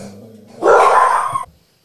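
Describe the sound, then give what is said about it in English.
A low, drawn-out whine gives way to a single loud, harsh burst of barking from dogs, lasting under a second before falling silent. No one speaks. “All right, sorry about the interruption with the dogs barking.”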